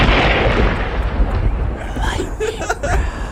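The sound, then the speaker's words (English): A loud bomb-drop explosion sound effect played from a soundboard: a dense, rumbling blast of noise with heavy low-end roar that holds steady for a few seconds before breaking into crackling debris-like texture. “Did he drop a bomb?”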